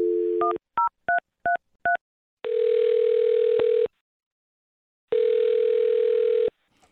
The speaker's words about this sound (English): Here we go. I'm going to dial her phone number.